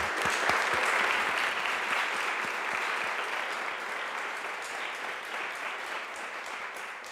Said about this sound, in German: Macht doch einmal einen großen Applaus für die Teilnehmenden.